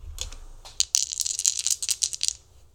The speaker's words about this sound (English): Oh no, that one went out of the dice tray. Let's try that one again.